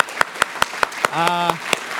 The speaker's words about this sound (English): I would like us just to appreciate with applause, because that's how we do it, the staff.